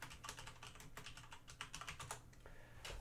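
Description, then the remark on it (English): Rapid, uneven clatter of keys being struck on a computer keyboard, a steady run of clicks with short pauses, fairly quiet and with no voices. “You're like typing the end of your like online career.”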